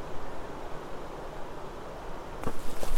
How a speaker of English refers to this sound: Don't realize how loud the creek is until you're trying to listen for something else.